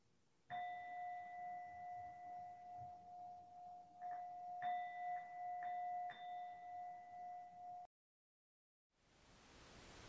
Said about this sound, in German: Sehr schön langsam die Glocke läuten.